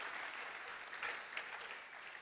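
An audience claps steadily, a dense wash of many hands with a few sharper claps standing out, filling the brief clip at moderate loudness with no voices over it.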